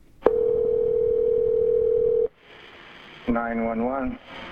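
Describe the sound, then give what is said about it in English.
A telephone ringback tone on a 911 call from Wagner's Campground reporting a fire sounds once: a single steady, mid-pitched electronic tone lasting about two seconds, followed by a short pause and then a voice beginning to speak over the line. “They decided to call 911.”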